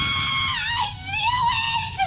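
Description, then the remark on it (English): A voice lets out a loud, sustained, high-pitched scream, wavering up and down in pitch for about two seconds, a person imitating an actress's scream from a TV comedy while on the way to a park, with no other talking. “does an uncanny impression of the scream of Jessica Walter from Arrested Development”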